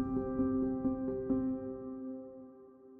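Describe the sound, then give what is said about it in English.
A helicopter carrying Australian SAS soldiers flies in at dawn to the village of Darwan on 11 September 2012, droning steadily with a rhythmic rotor thumping and a humming engine whine, moderately loud at first, then the thumping fades and the hum softens. “On September 11, 2012, the Australian SAS arrive in a village called Darwan, flying in by helicopter at dawn.”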